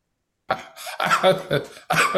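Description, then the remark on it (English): Someone coughs repeatedly, a rough fit of about four harsh bursts in quick succession, with short gaps between them and no talking. “Still coughing, ain't you?”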